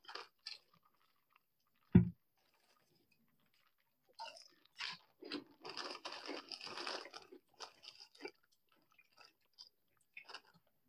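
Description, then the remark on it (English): Crunching and chewing of a dry mix of chocolate toast crunch cereal and popcorn, with a sharp bite near the start followed by a dense run of brittle crunches, then a few scattered chews trailing off. “It's popcorn and cereal.”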